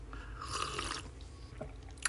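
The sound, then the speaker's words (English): A man takes a quiet, slurping sip of a drink from a bottle, a soft wet draw lasting under a second, followed by a pause and a small clicking swallow or bottle sound at the end. No one speaks. “So, I know y'all probably saying, what in the hell is he sipping on?”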